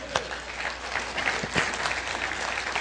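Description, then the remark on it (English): A crowd claps steadily for a few seconds for someone brought out on stage as Abraham, a dense wash of overlapping hand claps with some sharper individual claps standing out, fairly even in loudness throughout. “Can we have a round of applause for Abraham?”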